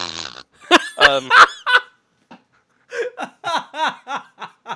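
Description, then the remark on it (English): A duck call honks out a burst of loud, raspy quacks, pauses briefly, then sounds a quicker rhythmic run of shorter quacks, with no talking. “You just had to work that duck call thing into the show somehow, didn't you?”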